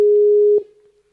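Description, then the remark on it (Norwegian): A single steady telephone ringing tone sounds clearly for about half a second as a call is placed, then cuts off and fades into quiet, with no voices present. “Jag ringer den då.”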